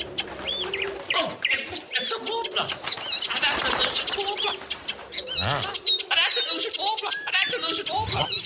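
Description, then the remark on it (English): A flock of pigeons cooing, dense overlapping warbling calls with bursts of wing flapping, continuous and fairly loud throughout. “Get me on those pigeons.”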